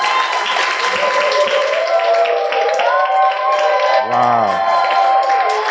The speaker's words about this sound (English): Clap for yourself. Your love for the Lord is on another level altogether. Yeah. Oh, it's like you don't want to clap for your own self.